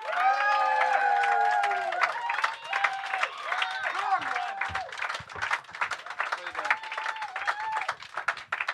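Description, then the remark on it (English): An audience bursts into loud, sustained applause welcoming a musician, dense clapping filling the whole stretch, with high whoops and cheering voices rising over it early on before the clapping carries on alone. “Please put your hands together for the main man, Mr.”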